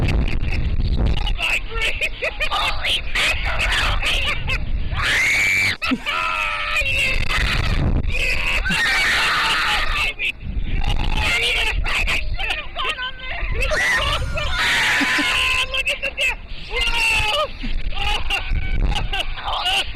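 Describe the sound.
Loud, sustained screams and shrieks from riders on a slingshot amusement ride, rising and falling in pitch over roaring wind noise, with yelling voices throughout.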